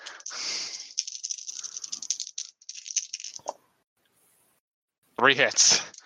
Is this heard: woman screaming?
no